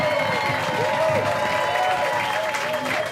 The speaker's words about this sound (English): Women are not fighting this battle alone. We're fighting alongside brave pro-life men. Let's give them a round of applause right now.